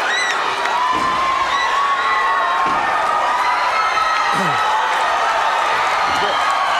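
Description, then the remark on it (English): A large wrestling arena crowd roars and cheers continuously as Ric Flair, in a neck brace, comes in with a bat, with scattered shouts and whoops rising over a dense, loud wall of voices for several seconds. “All right, and here is, listen to the crowd.”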